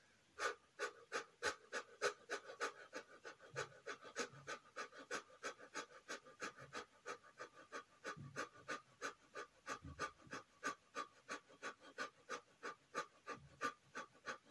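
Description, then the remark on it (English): Rapid, rhythmic panting breaths, breathing in quickly as part of a breathing exercise, repeat steadily for the whole stretch, each short huff fairly loud, with no talking. “And then back to our breath. Breathing in quickly.”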